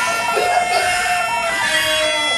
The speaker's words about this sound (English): I was wondering if you would be interested in buying some monkeys, because I own a monkey farm. Do you hear the monkeys?